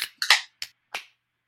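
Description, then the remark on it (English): A can of Second Wind Brewing's Art Without an Audience, a New England-style double IPA at 8.4% alcohol, snaps open with a sharp metallic crack and a burst of fizzing hiss, followed by two shorter hissing spurts as the gas escapes. No voices. “New England style, double IPA. It's 8.4% by alcohol. In 3, 2, 1, crack.”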